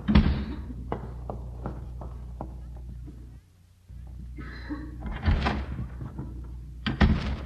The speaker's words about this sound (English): Careful, Miss Brooks. Are you sure Mr. Haney left? Well, I couldn't see him from where we were hiding, but I heard the door slam.